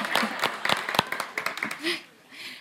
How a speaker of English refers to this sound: In the mighty name of Jesus, amen. Okay, so Samuel, we're... you're just going to clap after praying.